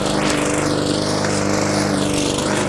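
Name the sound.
lawn mower engine running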